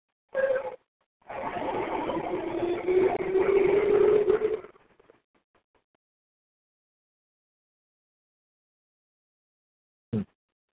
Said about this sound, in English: Excuse the truck.